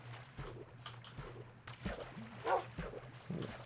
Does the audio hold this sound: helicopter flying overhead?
no